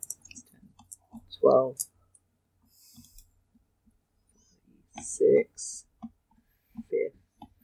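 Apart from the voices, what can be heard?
dice rolling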